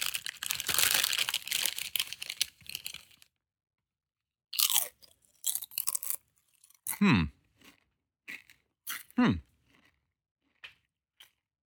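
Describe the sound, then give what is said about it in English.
Crinkly wrapper rustling for a few seconds as a free-range white mocha chocolate fairy is unwrapped, then a pause followed by a series of crisp crunching bites into its crunchy wings and chewing with irregular rhythm, no talking. “I ordered one of their free-range white mocha chocolate fairies. I'm going to try one right here on the show.”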